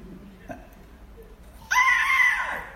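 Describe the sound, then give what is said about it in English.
After a moment of near silence, a man lets out a sudden, loud, strained scream lasting about a second, harsh and high-pitched, then it cuts off abruptly; he is re-enacting a scream he let out when he got into his car. “You know, it was silent and then I went, except I used profanity.”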